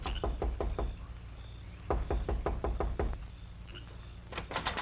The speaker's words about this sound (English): As he dismounted, he quickly replaced his mask, then knocked quietly on the side door to the office.